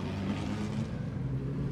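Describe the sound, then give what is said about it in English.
A steady, droning engine rumbles, a low continuous motor hum with a gentle rise and fall as a vintage Tourist Trophy garage van drives past on a wet street, with no talking. “And here comes the Tourist Trophy garage van.”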